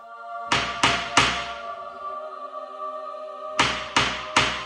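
Someone knocks on a door three times, pauses for a couple of seconds, then knocks three more times. The knocks are loud and evenly spaced, each with a short resonant ring.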